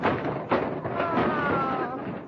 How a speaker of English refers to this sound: Now, look. You've knocked down the tree and you've broken the star.